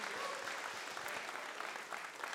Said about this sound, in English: Please stand. Sing, dance, it's a great song. Can we give a huge round of applause thanking